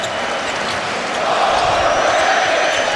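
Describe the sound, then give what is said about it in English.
A packed arena crowd in Boston chants "overrated" at the Miami Heat in game one against the Celtics, a loud, sustained roar that swells slightly partway through, with faint basketball bounces audible beneath the din. “Crowd starting in with the overrated chance here in game one.”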